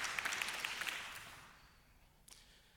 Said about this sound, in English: because it's God's word. We can clap for that.